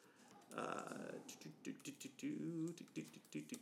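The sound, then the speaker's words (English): Rapid clatter of typing numbers on a computer keyboard, irregular clicks, with a voice talking over the keystrokes. “Should have just been two numbers, but I'm typing so much because I messed up.”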